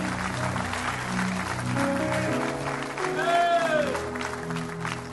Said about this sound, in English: If you receive that, give him a great big clap offering of praise and glory and honor in the house of the Lord today.